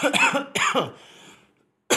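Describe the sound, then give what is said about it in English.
A person coughs as filming begins: two harsh coughs in quick succession, followed by a raspy trailing breath, then a brief burst at the very end. Loud, with no talking. “And of course, I start coughing soon as we film.”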